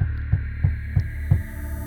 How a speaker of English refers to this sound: Now it sounds like the knocking is coming back from the other side. You run back outside into the hallway, and suddenly the knocking is coming from behind you again.